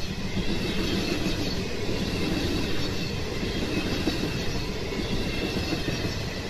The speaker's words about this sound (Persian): ریتم یک نواخت قطار کوپه شلوغ را خواب کرده بود.